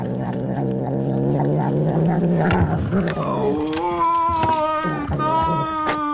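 A cat, presented as the Yule Cat of folklore, growls low and steadily, then breaks into loud, drawn-out wavering yowls, rising in pitch and repeating, with no talking.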